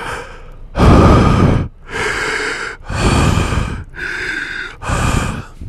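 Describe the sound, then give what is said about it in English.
A voice imitates a PlayStation support worker, working from home, breathing heavily and loudly into his microphone: five long, rough breaths in a steady rhythm, each harsh, with a brief pause between them. “And he was breathing into his mic so hard, he was like...”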